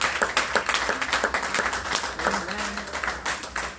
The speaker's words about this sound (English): Come on, clap your hands and give God some glory.